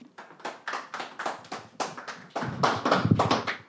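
A round of applause: steady hand clapping that starts out as a few separate claps, then thickens and grows louder as more people join in, with no voices.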